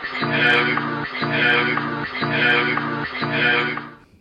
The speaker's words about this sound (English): The broken record plays.